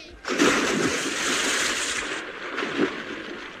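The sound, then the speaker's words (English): A sudden splash as a child is thrown into the sea, followed by several seconds of churning, sloshing water and a second smaller splash near the end, with no voices. “Why did you throw that child into the sea?”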